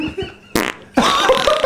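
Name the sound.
fart sound effect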